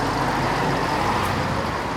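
street traffic

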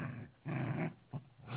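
puppies growling

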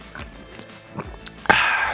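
sipping a drink

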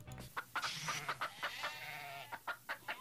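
chickens clucking

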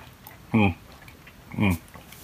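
drinking water

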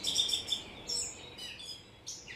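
birds singing

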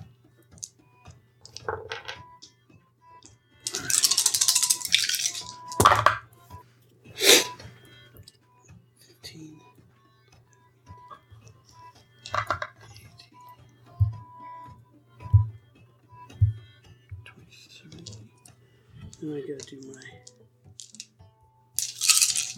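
many dice being rolled

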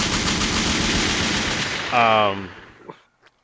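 gunshot sound effect

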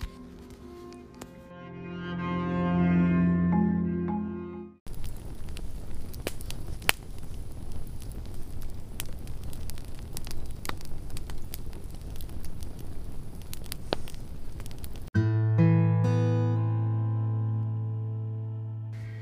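campfire crackling

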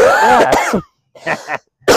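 coughing

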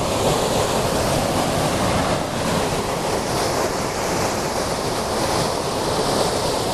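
rushing waterfall

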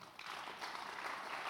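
audience clapping

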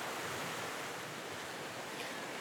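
beach waves and surf

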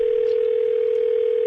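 telephone ringing

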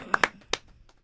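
clapping

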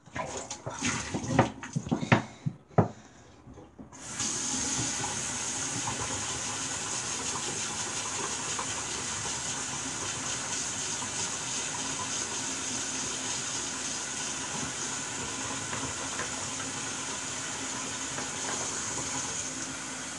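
water running

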